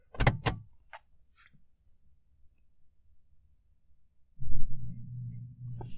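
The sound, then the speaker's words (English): A couple of sharp clunks up front, then quiet until a car's low engine rumble swells in and holds loud through the final seconds. No one speaks. “There's a frickin' car now.”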